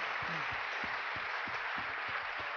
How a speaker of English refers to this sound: Ladies and gentlemen, there's a lot of work to be done. These are the people that are going to be doing the work. Could we have a big round of applause for our legislators and their staffs?